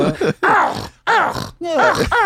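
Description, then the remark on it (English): A person imitates a Mexican stray dog barking with four strained, wavering vocal yelps, each sliding up and down in pitch, separated by short pauses. “Stray dogs in Mexico sound more like a...”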